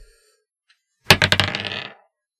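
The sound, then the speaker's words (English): Dice, rolled for a perception check needing 10 or better, clatter across a hard table: a quick burst of sharp, bright clicks and rattles that tumble for about a second, then settle into silence. No one speaks. “So what do I need to roll? My perception against his mind?”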